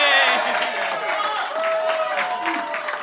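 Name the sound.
audience applause and cheering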